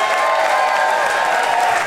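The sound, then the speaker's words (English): An audience at the Bell House applauds steadily, a dense wash of many hands clapping at an even loudness throughout, with no clear pauses or individual claps standing out. “A big hand for the Bell House for having us here.”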